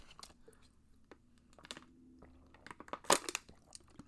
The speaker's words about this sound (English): Let me get a drink of water for a second.